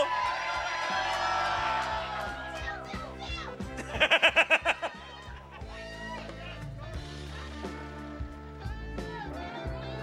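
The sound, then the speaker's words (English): An audience drinking fruit tarts at Urban Artifact shrieks and cheers nonstop on contestants, a dense wall of overlapping high-pitched voices, with a short burst of rhythmic, pulsing shouts partway through. “The audience has 2 jobs today. Drink delicious Midwest fruit tarts here at Urban Artifact and scream constantly.”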